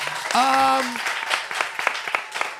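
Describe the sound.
A crowd applauds a guest chef after thanking him for joining, with steady, dense clapping for a few seconds, joined early on by a brief, high cheering voice that rises over the claps before fading.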